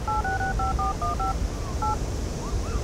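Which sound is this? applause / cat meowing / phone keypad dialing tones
phone keypad dialing tones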